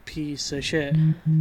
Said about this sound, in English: I'm sorry for the vibrations, guys. My phone.